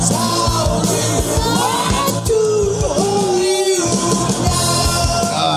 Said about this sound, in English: I'm not even going to talk over it. It's just... It's going to play the whole song.